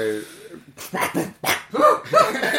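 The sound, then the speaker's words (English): A person mimics a dog, giving a short whine followed by a quick string of three or four loud, rough barks and yaps. “Bad dog!”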